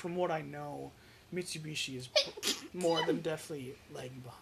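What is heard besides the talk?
sneeze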